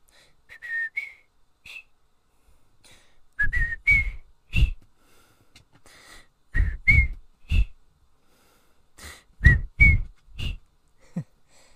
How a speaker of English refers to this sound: If you're wondering what that was the whistle I do in honor of one of our cats, Pringles.